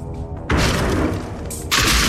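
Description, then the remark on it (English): A wooden door is kicked in with a sudden loud crash and a burst of splintering, cracking wood, followed moments later by a second heavy smash. No one speaks. “The sound of wood splintering, a door being kicked in, lights in our faces, and incoherent screaming.”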